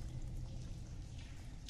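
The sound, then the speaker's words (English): A steady, muffled rush of water draining out of the back of a cave and falling into an unknown depth splashes continuously, a low, even roar with no voices, echoing faintly as if down a deep drop. “And from it, you're starting to hear the sound of like water falling.”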